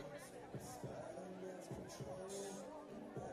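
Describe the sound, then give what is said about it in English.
A large, lively crowd at a stadium in Athens, dressed in pink for the Race for the Cure event on a gray, cloudy Sunday morning, fills the scene with a steady wash of cheering and overlapping chatter, many voices mixing together with no quiet gaps. “In the sea of pink, people are smiling, cheering, and dancing.”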